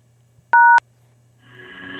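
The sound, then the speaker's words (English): A single short, loud telephone keypad tone as the pound key is pressed in an automated phone menu, a steady dual-pitched beep over a faint line hum, followed moments later by a recorded voice beginning to speak. “If you don't have a free code, press pound.”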